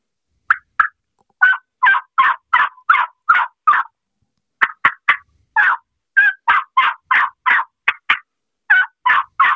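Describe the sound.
A turkey call is played in a loud run of raspy yelps mixed with sharp clucks and quick cuts, adding excitement and realism to turkey-hunting calling, coming in excited bursts with a few short pauses and no talking.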